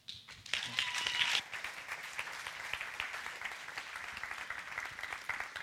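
An audience applauds and cheers, with a burst of whoops and bright shouts in the first second and a half, then steady clapping continuing at a moderate level to the end.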